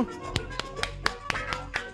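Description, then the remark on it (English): A run of sharp, evenly spaced hand claps on the show Match Game 22, about eight in two seconds, crisp and moderately loud with a steady rhythm, over a faint low hum and no talking. “Way to have your clapping out there.”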